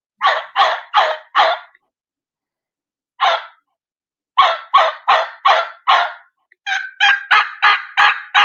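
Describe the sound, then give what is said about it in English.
A turkey hen answering calls, yelping in short runs of four to six raspy, evenly spaced notes, separated by pauses, loud with no talking. “There's a hen answering.”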